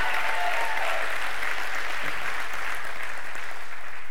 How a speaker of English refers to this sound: Hey, welcome to Super Sunday. We're so glad you guys are here, and it's such an honor to be here with you guys, and thank y'all for coming to celebrate our 20th birthday as TWBC. Can we give God a hand clap of praise for that?